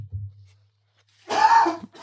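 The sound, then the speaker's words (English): A man has a coughing attack: a harsh, rasping cough bursts out after a low rumble and a short silence, loud and noisy for about half a second before trailing off. “He's having a coughing attack.”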